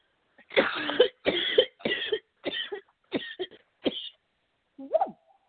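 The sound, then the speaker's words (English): A hacking coughing fit after taking a big, long hit while smoking: six or seven harsh, raspy coughs in quick succession, each burst a little shorter than the last, then a pause and one final strained, wheezy cough. “I took a really big long rip before, and I thought it would be all right because it was while the commercial was going, and you just got me at the end of that.”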